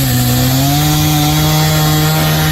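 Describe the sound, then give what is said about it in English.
A chainsaw cutting down a tree next to a house runs steadily at high revs, its loud buzzing whine holding a constant pitch as it cuts into the wood, with a harsh rasping layered over the engine drone. “I'm going to cut this thing down.”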